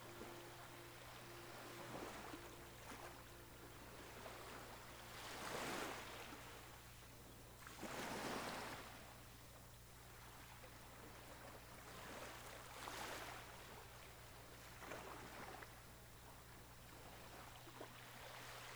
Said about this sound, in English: You jump out of the boat into the water, holding on while the gentle waves help beach it on the shore.